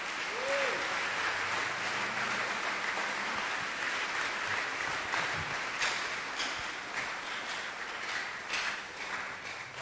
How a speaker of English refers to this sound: Clap your hands for the Lord. Give the Lord a wonderful clap of hands.